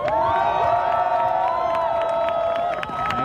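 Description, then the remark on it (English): A large crowd at the London Rebellion protest on a wet, rainy day cheers loudly and steadily for people being arrested, voices whooping and shouting together with high-pitched yells and scattered claps cutting through the sustained roar. “So can we give them a big cheer?”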